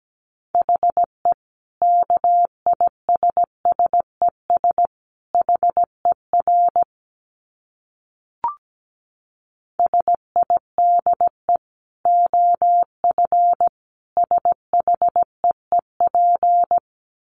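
Morse code sent at about 17 words per minute: a steady mid-pitched tone keyed into quick dots and longer dashes, with a brief gap and a faint click midway before the sending resumes.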